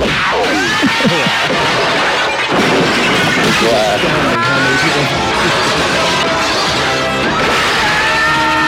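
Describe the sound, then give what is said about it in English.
Glass smashes and shatters amid a loud, crowded action scene, with crashing debris, rumbling noise and voices throughout. The din stays dense for the whole stretch. “Glass.”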